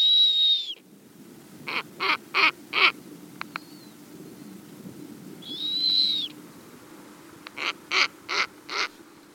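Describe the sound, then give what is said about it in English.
A snowy owl calls in a clear outdoor setting: a thin, rising whistle, then a quick series of four harsh, barking notes, and the same whistle-and-bark sequence repeats once more. No one speaks. “But what about the second most popular bird? Believe it or not, it's the snowy owl.”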